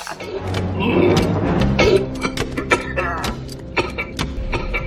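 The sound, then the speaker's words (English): General Grievous's wet, rasping cyborg cough, a fleshy hacking blended with mechanical clicks, whirs and ticks, repeating in loud irregular bursts for several seconds with no talking. “that cough, this, like, mechanical sort of mash with the human is just so good.”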